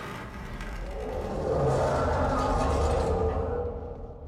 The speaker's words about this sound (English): So I recorded probably an hour's worth of cinder blocks scraping across a wooden floor.